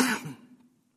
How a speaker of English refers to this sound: Those of you who are panicking online, that was a natural cough. Scratching my throat.